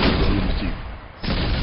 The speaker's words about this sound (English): The Baron waved at the men behind him, and the 5-inch stern gun swung around toward the dock and unleashed its fire.